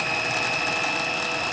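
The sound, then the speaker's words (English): A blender runs steadily, its blade chopping beans into a paste with a continuous, even whir and a thin high-pitched whine over a gritty mechanical rattle. “You might need to add a little bit of water to it, but start by just scraping the beans down closer to the blade and then running it again.”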